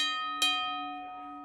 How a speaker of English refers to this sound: That bell you just heard indicates when the fight begins.